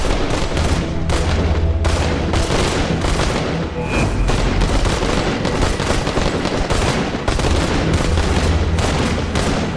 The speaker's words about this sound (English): You hear it. You hear this gunfire. It sound, at first you're like, what is that? It sounds like firecrackers. And then all of a sudden you realize it's the fucking gunshots. It sounds like a battle.